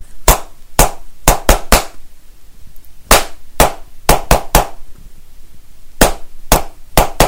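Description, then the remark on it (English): Sharp hand claps in a repeated rhythm for listeners to clap back: two slower claps followed by three quick ones, played again, then a third round begins. The claps are crisp and loud, with quiet gaps and no talking. “And then can you clap it back?”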